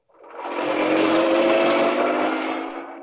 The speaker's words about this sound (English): Inspector Manson and Sergeant Bright left Scotland Yard, careening out of the gates on two wheels, and roared out of London and into Essex.